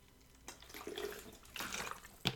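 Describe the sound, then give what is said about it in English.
Water poured into a potted tree, splashing and trickling in a few uneven bursts, with a brief louder splash at the end and no talking. “I'm going to just give it a bit of water right now while we're on the potty.”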